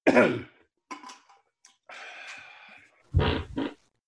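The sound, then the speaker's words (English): A fart heard just before a singer starts singing, among a string of bodily noises: a low, buzzy opening blast, a few faint puffs, a longer hissy stretch, then two quick loud bursts. No one speaks. “I want you to see if you hear the fart before he starts singing.”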